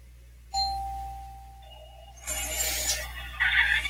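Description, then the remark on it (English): A doorbell rings with a two-note ding-dong chime, the first tone bright and slowly fading, then the lower second tone. Loud, hissy noise follows and covers the end. “Someone's going to come and ring the doorbell.”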